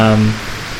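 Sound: rain falling on surface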